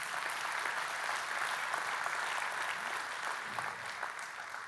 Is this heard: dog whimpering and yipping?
no